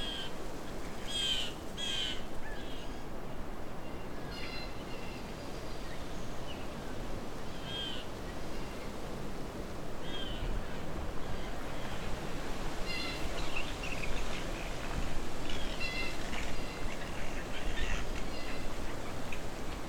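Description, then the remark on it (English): Blue jays at the entrance to Alvar Bay call repeatedly over a steady outdoor hiss, giving harsh, high squawks and odd croaking notes in irregular bursts, with no talking. “So I'm at Alvar Bay, but the entrance is full of blue jays making lots of interesting sounds.”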